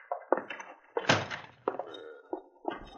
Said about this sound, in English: Here he is now, coming in the back door.